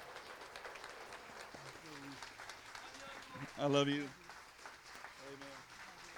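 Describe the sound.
Steady applause from a crowd at Caney Creek Cowboy Church, given in honor of a church member for his service, dense clapping running throughout while a man's voice speaks briefly over it and rises louder near the middle.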